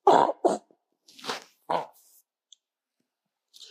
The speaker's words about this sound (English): Excuse me, I coughed.